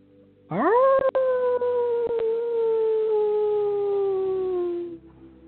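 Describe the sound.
A person imitates a wolf with one long, loud howl, swooping up sharply and then sliding slowly downward for about four seconds before breaking off. No one talks.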